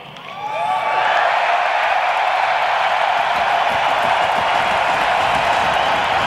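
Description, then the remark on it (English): A big crowd roars, swelling quickly in the first second and then holding a loud, dense, sustained cheer with no talking on top. “My beautiful noise is a little different. Mine is the roar of the crowd.”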